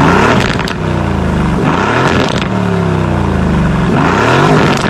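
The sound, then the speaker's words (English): A powerful 4-liter twin-turbo V8 car engine of 503 horsepower, in sport mode, revs loudly, with a few throttle blips whose pitch climbs and drops back to a rumbling idle. No one speaks. “Yeah, we'll throw a couple revs at it real quick.”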